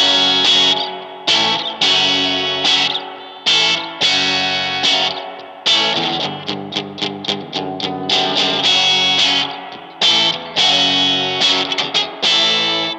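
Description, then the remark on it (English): Loud, gritty overdriven electric guitar played through a 5-watt amp set to 10, with strummed chords and quick choppy stabs that ring out and cut off in a driving rhythm, no talking. “5 watts on 10, that amp is loud as hell. That overdriven sound, it is so good.”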